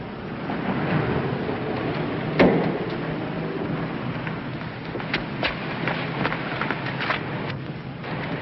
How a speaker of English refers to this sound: Over there, one of those two brownstone fronts. Someone just closed the door.